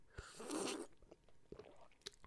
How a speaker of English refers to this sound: Sorry. I had to sip my coffee.